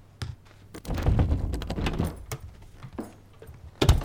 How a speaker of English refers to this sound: I shall lock the door.